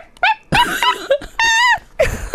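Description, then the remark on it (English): A person imitates a chihuahua with a quick run of high, nasal yips, four or five short bursts in uneven rhythm, fairly loud, with no other talking. “Can you do a like a little puppy? Seriously? Yeah, yes. Seriously. Like a chihuahua.”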